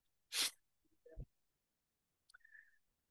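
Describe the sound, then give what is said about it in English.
A stifled sneeze held in through a plugged nose: a sharp breathy burst, a muffled low thump, then a quiet nasal squeak a moment later. Fairly soft, with no talking. “Excuse me, I'm going to sneeze, so I'm kind of plugging my nose so that I don't sneeze.”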